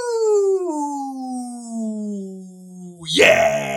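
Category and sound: human body sound, throat clearing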